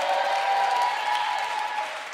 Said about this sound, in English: It said, you are a chosen generation. Come on, clap like you're a chosen generation.